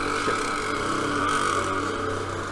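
A scooter engine drones steadily outside a window as it passes, its buzzing tone swelling slightly and fading over a couple of seconds with no one speaking.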